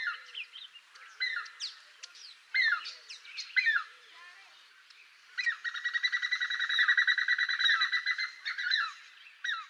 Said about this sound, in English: That call from Hemprix hornbill is described as a piping whistle.